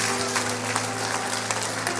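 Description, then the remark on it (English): An audience claps steadily in a dense, continuous wash of many hands, with a low sustained tone humming underneath throughout. “Come on, clap your hands.”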